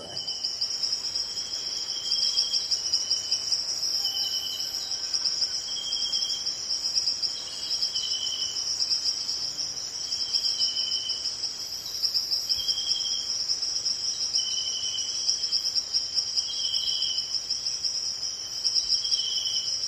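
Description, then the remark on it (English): Jungle ambience dominated by a steady, high-pitched drone of insects, with a second layer of pulsing chirps repeating throughout at an even level and no voices. “In the jungle. That's right, you were in the jungle.”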